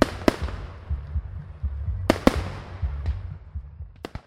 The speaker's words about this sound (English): Shelby went with her mom and dad that night to Freshwater Lake. They bundled up in their mom's pickup truck and counted down together as midnight struck and the fireworks went off over the lake.